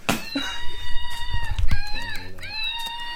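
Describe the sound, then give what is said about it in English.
A Woot monkey noise plays from a phone on full blast: shrill, wavering cries with sliding pitch, one long call followed by a second after a brief break, over some low thumping bumps. “Holy shit, these Woot monkeys.”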